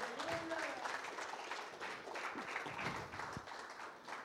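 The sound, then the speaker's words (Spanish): An audience applauds for the Lord during a sermon, a dense, steady wash of many hands clapping that holds for about four seconds, with a few raised voices mixed in near the start. “¿Alguien puede darle un aplauso al Señor en esta hora?”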